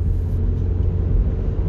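A steady, low rumble fills the inside of a moving car, the deep road and engine drone holding even and close throughout with no voices or other sounds.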